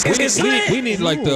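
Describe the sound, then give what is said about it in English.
A voice imitates air horn blasts: about five loud, buzzy 'bwaa' swoops in quick succession, each bending up then down in pitch, filling the short clip with no other talk. “Yeah, yo, we need air horns.”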